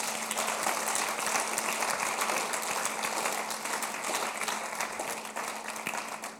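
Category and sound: crowd, audience clapping hands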